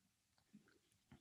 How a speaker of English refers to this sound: Whilst you munch that donut